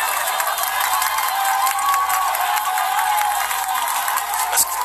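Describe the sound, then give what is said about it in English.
A protest crowd around Times Square and Columbus Circle, with signs reading "Trump, peace, out now", cheers and claps continuously, a dense, bright wash of voices and applause holding at a steady loud level with a few sharper whoops standing out near the end. “That's what the signs are saying, ladies and gentlemen. They're cheering.”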